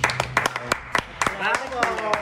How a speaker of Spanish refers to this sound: Aplaudiendo.